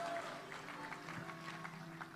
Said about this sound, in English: Clap your hands if you believe that and shout, yes, I believe.